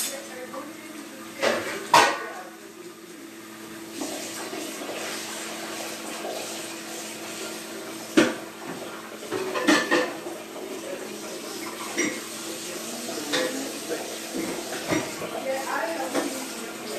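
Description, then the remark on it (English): Dishes being washed in a sink: running water hisses steadily while plates and pans clatter and clink in sharp, irregular knocks, with a few louder bangs scattered throughout. “I'm gonna wash all the dishes up real quick because that's what the sous chef or the dishwasher does.”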